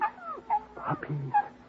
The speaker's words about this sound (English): Puppies, darling. Yes, sir. Six of them. Yes, well, that little rascal. Puppies. So that's why she disappeared, eh? To have her family.